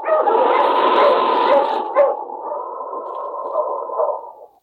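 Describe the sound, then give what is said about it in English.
A dog, King, Sergeant Preston's wonder dog in the Yukon during the Klondike gold rush, gives a long, drawn-out bark that stretches into a sustained, loud baying tone over a rushing, windy hiss that cuts away after about two seconds. “Now back to the days of the gold rush when Sergeant Preston and his wonder dog King battled through storm and snow to preserve law and order as they met the challenge of the Yukon.”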